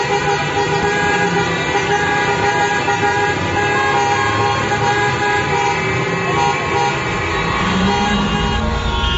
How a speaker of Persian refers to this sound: بله، همینطور در همین رشت و اضافه بر اون در شهرهایی مثل کرمان و سنندج و مشهد و محلاتی مثل صادقیه و بولوار کشاورز تهران هم معترضین با به صدا در آوردن بوق ماشیناشون به استقبال نظام مقدس رفتن تا یه وقت یادش نره که چیزی تموم نشده.